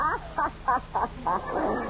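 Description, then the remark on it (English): A person clears their throat in a quick run of five or six croaky, rhythmic vocal bursts, fairly loud and evenly spaced, with no talking over them. “No, I was clearing my throat.”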